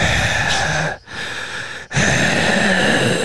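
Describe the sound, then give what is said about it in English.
A professional podcaster who is a mouth breather breathes heavily through the mouth into a microphone, three loud, rasping huffs separated by brief pauses, imitating the sound of breathing. No talking. “That's the bad thing about being a professional podcaster is I breathe out my mouth.”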